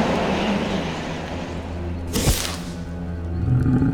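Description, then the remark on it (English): A lion roars, a deep, rumbling growl that carries throughout, swelling into a sharp, harsh burst midway before rumbling on. Loud, with no talking. “Bring forth from this egg a mighty lion.”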